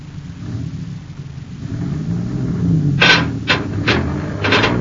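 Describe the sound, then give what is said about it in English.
A truck engine rumbles low and steady as the truck pulls straight ahead, then several harsh, grinding metal scrapes break out in quick bursts as a heavy Endurium beam is dragged free. No one speaks. “You tell your driver to pull the truck straight ahead now. I think the Endurium beam will pull out without causing any more damage.”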